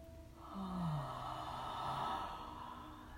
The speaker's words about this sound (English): Inhale to yawn. Inhale to yawn. Inhale to yawn.